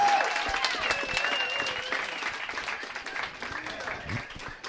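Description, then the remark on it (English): An audience claps together in a steady, dense patter of many hands, holding at a moderate level for about five seconds, with faint voices and sustained tones underneath. “That was a mediocre clap.”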